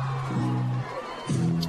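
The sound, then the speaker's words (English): A football crowd cheers after a Riverview touchdown interception return in the first half, a steady, dense roar, with two sustained, droning swells of massed voices rising out of it, one after the other. “Well, that play got the crowd into it a little bit.”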